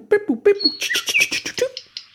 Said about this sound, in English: a nightingale has a song that takes hours and hours to sing. It's made out of several hundred short phrases.